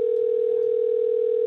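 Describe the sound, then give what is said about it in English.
A steady, unbroken electronic phone tone hums on one pitch while a Skype call to a Google Voice number is connecting, fairly loud and alone with no voices. “Please state your name after the tone, and Google Voice will try to connect you.”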